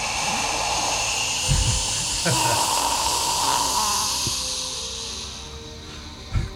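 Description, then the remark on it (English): A person voices a long, steady breathy hiss and roar, imitating breathing fire at a snake, sustained for several seconds with a couple of brief thumps. “All right, so you breathe fire and”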